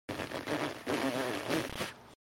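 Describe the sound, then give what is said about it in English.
A wet, sputtering attempt at whistling over the phone by someone being taught to whistle, never finding a clean tone, just a buzzy, spitty rasp in three loud bursts, sounding a bit like a duck call. “Spit less. It sounds like my duck call.”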